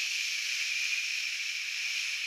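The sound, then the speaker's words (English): A voice imitates a water tap at a bathroom sink turning on by itself, producing a steady, breathy hissing 'shhh' that holds at an even, moderate loudness for just over two seconds without any break. “And the sink next to him, the water tap turns on by itself.”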